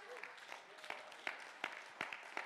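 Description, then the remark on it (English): A standing audience claps their hands in praise of God in a steady, rhythmic beat, the sharp unified claps rising above a dense wash of scattered applause and crowd noise. “Stand to your feet and clap your hands and give him praise.”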